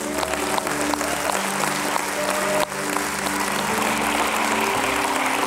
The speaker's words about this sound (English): Give God a hand clap, would you please?